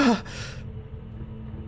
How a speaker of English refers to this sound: The prisoners by the front of the door give distance and gasp.